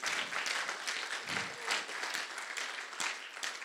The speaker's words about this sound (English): And perhaps if you're white British, you just want to clap with me and applaud those.